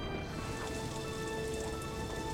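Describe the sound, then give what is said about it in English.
Steady rain pours down in a continuous, dense hiss of drops striking a surface, evenly loud throughout with no voices present. “Now it's raining.”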